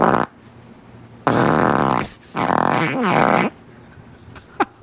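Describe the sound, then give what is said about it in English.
Four loud farts: a short one at the start, then three long buzzing, rumbling blasts in quick succession with brief pauses between, ending with a couple of faint clicks. “And that was we have four farts.”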